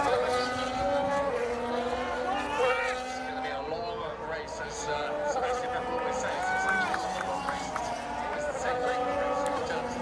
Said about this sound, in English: This is the sound that one of these mean F1 cars make.